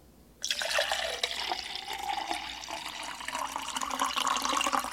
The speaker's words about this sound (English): All right, let's fish the scoop out. And we'll just do one scoop, since I've already had 500 milligrams of salt. I mean, I do need it. I just got back from my run. Some more water in here.